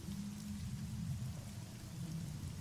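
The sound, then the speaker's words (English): Steady rain falls continuously, a dense hiss spread across the whole clip with a low, rumbling undertone. No one speaks, and the downpour stays at an even, moderate loudness throughout. “when you wake up, it is raining.”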